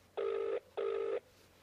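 Two steady bursts of a telephone ringback tone, each lasting about half a second with a short gap between, heard clearly on their own with no talking.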